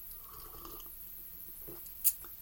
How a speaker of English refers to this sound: Hold on, let's sip on some coffee because it's heavily needed.